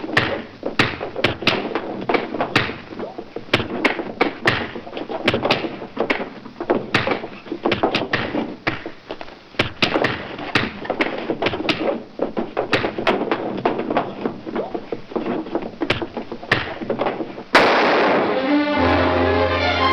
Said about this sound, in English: The sound of those punches without the accompanying video is sort of hilarious.